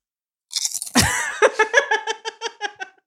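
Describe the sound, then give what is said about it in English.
A loud crunch as someone bites into a Cheetos cheese snack, followed by a quick series of rhythmic chewing crunches that fade slightly over a few seconds. “So I just had to take a crunch on this one.”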